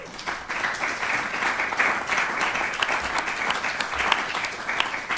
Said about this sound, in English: If you're hearing my name, you please stand, and you please give them a round of applause.